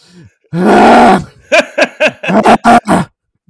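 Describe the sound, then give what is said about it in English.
A voice imitates the heavy panting of Gosh Adoker at a pre-fight weigh-in: one long, strained, groaning breath, then a run of about eight quick, rhythmic, guttural huffs, all loud and with no other talk. “then they'll have their little press conference, yeah, and Paul Bunyan will just be talking shit the whole time, and Gosh Adoker will just be over by his manor just like panting.”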